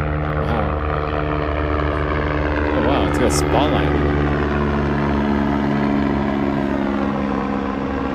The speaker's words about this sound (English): This is a helicopter taking off like right now. So I'm in Murray Park, Sunday night. Here comes that helicopter. Wow. Hey, it's an immersive experience. So it's gonna fly right overhead. Here we go. It's a helicopter. It's heading south.